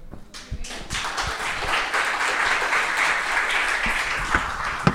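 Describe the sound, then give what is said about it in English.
Audience applause starts with a few scattered claps, then swells into a steady, dense wash of clapping that holds for several seconds, with no voices over it. “How come you never clap for me?”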